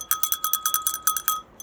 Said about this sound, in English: And let us ring a bell of celebration.